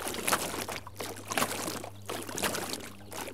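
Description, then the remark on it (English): Footsteps thud across a floating wooden dock in a slow, uneven rhythm of about three steps, with water sloshing and a steady low hum underneath. No one speaks. “You can hear the dock I'm walking on. It's a floating dock.”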